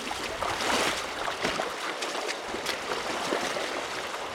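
A biologist wades across Little Rock Creek in a steep canyon of the Angeles National Forest, Southern California, at sunset, with irregular sloshing and splashing over a steady bed of rushing water. No one speaks.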